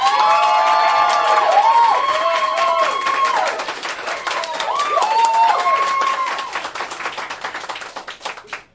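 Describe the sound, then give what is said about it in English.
An audience bursts into sustained applause to vote for the winner of a debate on privatizing water, with dense clapping and rising whoops and cheers, loud, with high shouting voices sweeping over it before the noise gradually fades out. “If you believe that the winner of this debate arguing for privatizing water and also being Kevin's buddy is Erica Dreisbach. Please applaud right now.”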